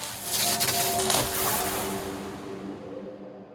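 A magic spell sound effect: a bright, hissing whoosh layered with faint sustained humming tones, strongest in the first second and then slowly fading away. No voices.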